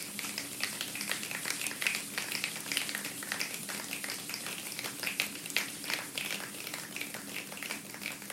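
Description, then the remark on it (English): A group of people imitates light rain as part of building up a thunderstorm, producing a steady, dense patter of soft taps and snaps that holds an even level throughout, with no talking. “Light rain.”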